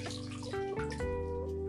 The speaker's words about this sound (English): That's a time for myself. No noise. Just myself and the splashes of water.